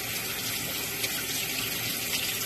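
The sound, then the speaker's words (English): Lukewarm tap water runs in a steady, continuous hissing stream, fairly loud, as if filling a cup, measuring 1.5 cups of water for making dough, with no voices over it. “1.5 cups of lukewarm water.”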